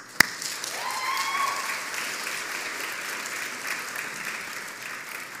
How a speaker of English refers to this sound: They cheer because I'm in charge of them and I let them get things.